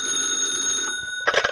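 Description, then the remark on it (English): An old-fashioned telephone bell rings steadily in a restaurant closed for the night, a bright metallic trill that holds through the moment before a brief clattering bump near the end, as if the receiver is lifted. “Right now, the restaurant's closed for the night, and only the waitress is there as the phone rings.”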